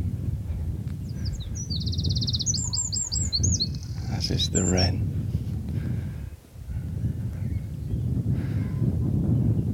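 A songbird in a dawn chorus in rural Dorset sings a quick, jangling burst of high chirps and trills for a few seconds, then falls quiet, leaving a steady low wind rumble underneath throughout.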